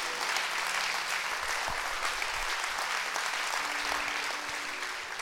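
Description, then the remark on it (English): Steady, sustained applause from a church audience standing and clapping their hands to rejoice at the word of the Lord during a service, a dense continuous patter at an even loudness throughout, with no voices standing out. “Clap your hands and rejoice at the word of the Lord today.”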